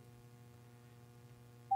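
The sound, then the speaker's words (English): A low steady electrical hum, then right at the end a loud electronic phone tone abruptly starts, the opening beep of an incoming call from someone calling back. “He called me back. Here we go.”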